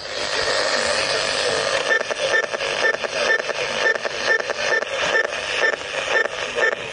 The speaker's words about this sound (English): every time we press a button on the remote control, it makes this awful noise on the radio